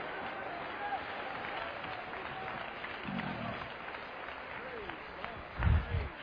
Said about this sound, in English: Come on, clap your hands, wave your hands, say, I can sleep on a windy night.